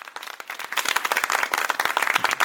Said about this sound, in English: I think he's going to need a pretty long applause today. Yeah. Sounds very one-sided on the clapping. It does.